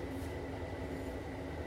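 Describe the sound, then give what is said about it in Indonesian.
A noisy air conditioner runs with a steady, droning hum and a faint tonal whine, its constant mechanical rumble never changing in level. “Itu AC.”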